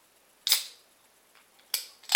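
A beer can being opened: a sharp crack with a short fizzing hiss, followed by two more crisp snaps with hissy tails, clear and fairly loud with no talking.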